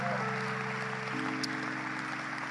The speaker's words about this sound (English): Give the Lord a better hand clap, far better hand clap.